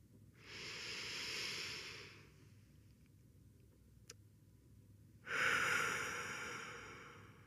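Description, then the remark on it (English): Two long, slow breaths taken together in a guided breathing exercise, each a broad airy rush lasting over a second, separated by a quiet pause; fairly loud, with no talking. “Move it through our body 3 times as we breathe together.”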